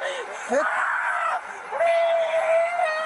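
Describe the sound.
A man screams in pain in two long, strained, high-pitched cries, loud and close, with a short break between them and a faint murmur of other voices behind.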